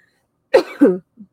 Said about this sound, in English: The smoke is still burning from the smudge pot, so that's why I'm coughing. I'm sorry about that.